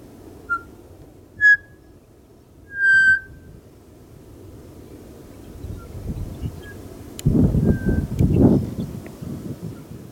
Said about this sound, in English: So I wanted to play a little pied butcher bird. These are from Australia, and I just love them.